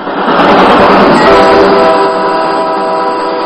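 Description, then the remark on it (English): A loud train horn blares steadily over the rumble of a passing train, a sustained chord-like blast lasting a few seconds with no voices. “And now, folks, it's time to load this train up and call all aboard.”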